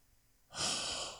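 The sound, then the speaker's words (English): A single sharp, breathy gasp rushes in after a brief moment of near silence, then holds as a loud airy breath before trailing off. “Audible gasp.”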